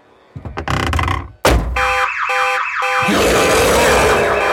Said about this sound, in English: Particularly don't touch any of the cars. Those alarms are sensitive as shit.